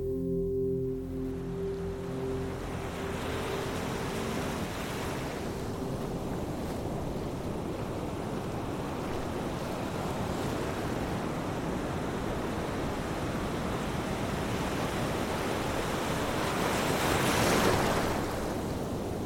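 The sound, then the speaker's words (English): Ocean waves wash steadily onto a cold, foggy, overcast beach in a continuous rushing roar, swelling louder near the end, while a low sustained tone fades out during the first few seconds. “Here we are, on a cold and dreary beach.”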